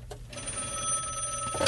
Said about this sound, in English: Wait 1 second. I think we're getting a phone call. Okay. We're going to pull this in real quick.